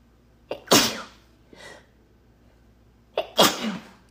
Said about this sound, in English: I have to sneeze.